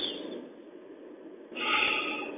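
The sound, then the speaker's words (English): A voice imitates a man slowly breathing deep on a peaceful beach: a long, soft, airy inhale, then a louder, brighter exhale near the end. No words are spoken. “And he's breathing.”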